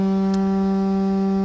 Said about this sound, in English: Ah, there's the foghorn. Hope that was picked up nicely by the microphone.